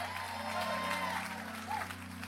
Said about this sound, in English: If you believe it, give them a hand clap and a shout.